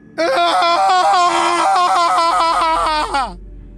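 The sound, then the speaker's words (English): A man in a mask lets out a single sustained, demented, agonized scream lasting over three seconds, loud and strained with wavering pitch, rising and cracking before it breaks off with a falling groan. “He jerked his head to one side, turned his face upward, and let out a demented, agonized scream.”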